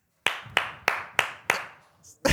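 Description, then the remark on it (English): A single person claps five times at a steady rhythm, each sharp clap followed by a brief ringing tail, then a short pause before another clap begins. “Damn, I was the only one that clapped.”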